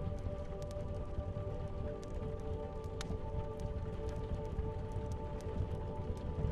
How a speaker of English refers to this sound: The rain that taps your window and the crackling fire soothe your mind more. With each sound that can be heard, your eyelids become more and more heavier.